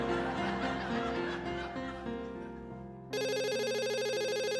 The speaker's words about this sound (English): The phone is ringing in the middle of the night again, as it has for a while at Tony Holloway's new place in Syracuse, New York.